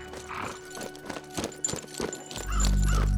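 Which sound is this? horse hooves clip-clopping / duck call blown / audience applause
horse hooves clip-clopping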